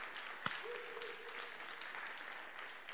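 A crowd claps steadily and densely for the full three seconds, a fairly soft wash of applause with one sharp click early on and a faint held tone briefly underneath.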